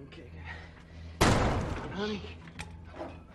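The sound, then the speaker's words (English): A big heavy metal door with stone pillars on either side, in a wine cellar, being pried at with a pocket knife, with one loud clank and scrape ringing out before fading, and faint murmuring voices in the background. “Trying to pry this door open. With a pocket knife.”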